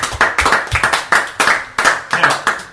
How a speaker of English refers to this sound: So I think we should give Didier Drogba a huge, huge round of applause and thanks for being such an absolute legend for us and helping us to win so many trophies, but in particular the Cup of the Big Ears.